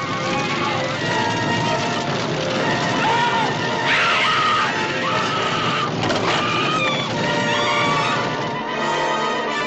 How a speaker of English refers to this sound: The screams heard here are obviously those of a woman who realizes that she is about to die. But there's also a wounded quality to them because she realizes that, once again, she is being robbed of the ability to mother a child.